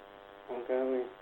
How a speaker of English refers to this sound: You're buzzing. And I don't mean you're having a great time. I meant you're literally making a buzzing noise.